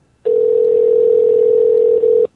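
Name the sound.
telephone call tone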